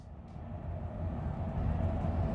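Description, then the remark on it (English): A train rolls along the rails with a steady, deep rumble that swells slightly louder over a couple of seconds, a continuous mechanical drone with no voices. “Travelling on a train for 3 hours up to a meeting means that I can get loads of work done, only if it works.”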